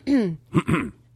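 A gruff, low-pitched cough: a voiced rasp followed by two quick, harsh bursts, somewhat like throat clearing, with no talking over it.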